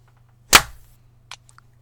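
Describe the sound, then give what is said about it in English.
Synchronised hand claps by a group counted in with 'one, two, three': a sharp, loud burst of hand claps landing together, followed by a fainter single clap moments later and a couple of tiny ticks, over a low steady hum. “Did we all clap? I only heard two.”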